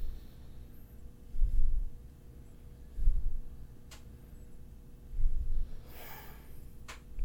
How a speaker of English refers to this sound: Who's breathing into the mic? Me, sorry. that last... It was just like... Where's it coming from? Yeah, that last was me. It's on you.